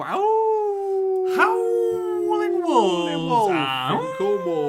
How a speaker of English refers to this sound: Howling Wolves.